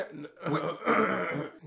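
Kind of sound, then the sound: human body sound, coughing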